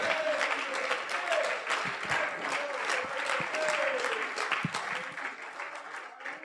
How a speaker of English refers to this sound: Why don't you go ahead and clap your hands and magnify the Lord?